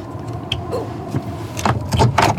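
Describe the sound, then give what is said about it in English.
A roof hatch door at the top of a ladder is pushed open to the roof space, with scraping, clunking mechanical noises over a steady low rumble of wind tugging the door, building into louder gusty, rattling bursts toward the end. “So this is the door you're opening now to the roof space.”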